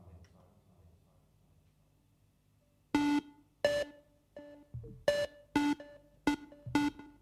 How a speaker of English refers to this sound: If everything's ready here on the dark side of the moon, play the five tones.